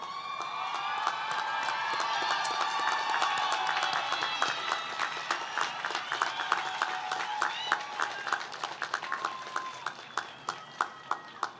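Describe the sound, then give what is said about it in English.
A large audience at the RCBC 2023 Liberal Arts Commencement applauds loudly for the faculty and staff, with cheers and whoops mixed in, then the clapping thins out over the last few seconds into scattered, separate claps. “So before we conclude, I just want to give another round of applause for our faculty and staff who have worked tirelessly to prepare the next generation of leaders.”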